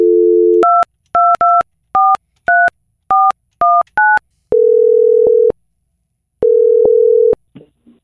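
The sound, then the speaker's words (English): A brief telephone dial tone gives way to about ten quick keypad beeps dialing a number to call a woman, followed by two long, steady ringback tones with a pause between them, clear with no voices. “So we're going to get her on the phone.”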